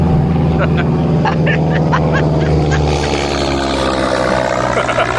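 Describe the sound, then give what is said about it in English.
A small Piper Cub propeller airplane engine drones steadily and loudly, a low buzzing hum with a rough, slightly fluttering texture that holds an even pitch throughout. “So that's not a jet, but oh well.”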